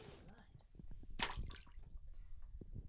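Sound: object splashing into water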